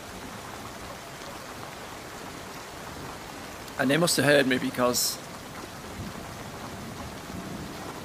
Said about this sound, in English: Ah, look at that, we've got hailstones. There you go, hailstones. In June. I'm going to have to pull the window a bit more shut.